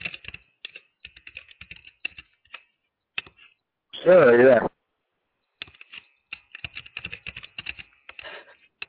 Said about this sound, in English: I hear you typing.